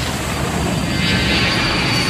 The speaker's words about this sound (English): When we cut back to the plane, it's a hard cut right in the middle of a loud plane takeoff.